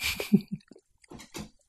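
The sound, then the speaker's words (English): A child chews candy, with a few moist, irregular mouth bursts and smacks separated by brief pauses, heard alone without talking. “Swallow it. You got to chew it first.”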